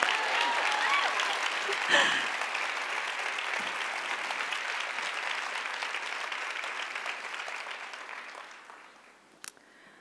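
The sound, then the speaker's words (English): A crowd claps steadily for several seconds, a dense wash of applause that gradually thins and fades out near the end, with a single sharp clap standing out at the close. “One more round of applause for Josh, not us.”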